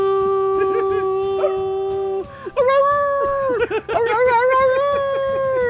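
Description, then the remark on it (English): A person howls like a wolf, one long steady note held for about two seconds, then a second wavering, gliding howl with a few breaks, loud. “Yeah, wolf on the prowl.”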